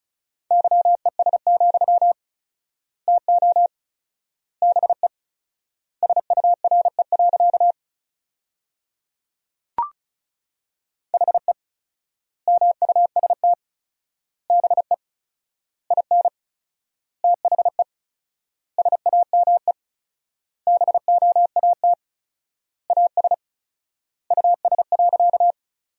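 Fast Morse code at 35 words per minute with 4x word spacing, sending sentences from the top 500 words in a single steady mid-pitched tone, rapid dots and dashes in short word groups separated by long silent gaps, with one brief click partway through.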